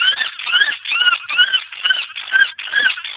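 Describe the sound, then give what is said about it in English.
A woodpecker's distress call: loud, harsh, shrill squeals repeated in quick succession, about seven raspy cries in a steady pulsing rhythm, alone with no voices. “This is the woodpecker sound.”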